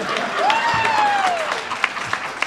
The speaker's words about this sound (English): If you people don't applaud, we pay for it later.